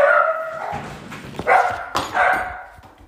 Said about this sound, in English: Frodo started barking.